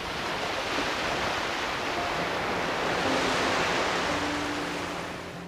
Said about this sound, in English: So here's an episode with just sounds of the beach and the waves for you to unwind. If you're listening from the Northern Hemisphere, where it's too cold right now to do a trip to the beach, I hope you find these sounds refreshing.